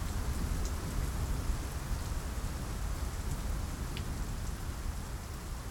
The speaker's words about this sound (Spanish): Y hay un nombre de amor que nunca digo, pero que digo cuando llueve así.